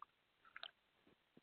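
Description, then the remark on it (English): Quiet sipping of water: a few small wet mouth clicks, then a brief gulp-like swallow at the end, with no one talking. “I'm having a sip of water, by the way.”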